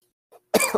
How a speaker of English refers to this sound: Sorry. I'm coughing. It's all good.